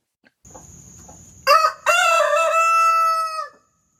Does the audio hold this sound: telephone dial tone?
no